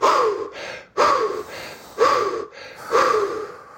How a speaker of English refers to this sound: We call that recovery breathing, right?